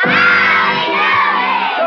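A crowd of children yells out "Howdy Doody" together in one loud, sustained burst of excited shouting that fills the space for about two seconds.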